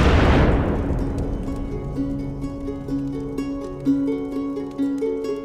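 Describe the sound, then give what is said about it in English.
A single loud, distant explosion booms at the start and rumbles away over about a second, then a sustained, eerie musical tone takes over. “You hear in the distance, not too far away, a loud explosion.”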